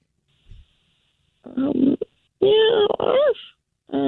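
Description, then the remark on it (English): A voice mimics a kitten and a dog fighting: a short rough, growly bark-like burst, then higher whiny mews with rising and falling pitch, separated by brief pauses and ending on a cut-off yelp. “That was a kitten and a dog just kind of, I wanted her to fight, not cuddle.”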